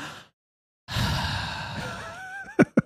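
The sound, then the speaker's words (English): A voice imitates a long, deep calming breath, a drawn-out airy exhale after a brief pause, ending in a few short sharp puffs. “Are you breathing to calm control yourself down?”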